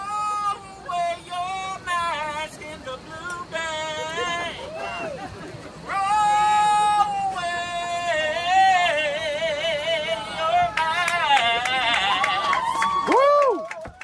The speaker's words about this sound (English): And he is singing. It's an African-American guy, beautiful voice. Great voice. Singing about throwing away masks, and people were laughing and like giving him high fives and clapping.